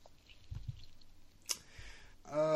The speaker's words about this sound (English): Hopefully Truncate Silence takes out a good amount of me actually clicking through internet links to get to where I'm supposed to go.